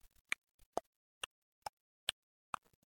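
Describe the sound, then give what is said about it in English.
A big mechanical clock ticks steadily, six sharp, even clicks, fairly loud, each roughly half a second apart against near silence. “It's a big mechanical clock.”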